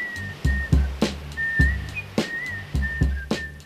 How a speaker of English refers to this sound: Don't whistle about it. No, no, no, no.